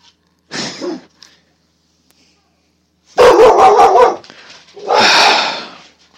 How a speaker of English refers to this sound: Lilo barked, for those who don't know.